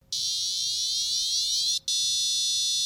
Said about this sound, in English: When you plug in the beacon, it begins charging and you'll hear this sound.